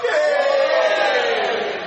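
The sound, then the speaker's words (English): A church audience at a Sunday service cheers together in a loud, sustained burst of many mixed voices, holding steady for about two seconds before easing off slightly at the end; the cheer comes from those not born in the country. “If you were not born, give us a cheer.”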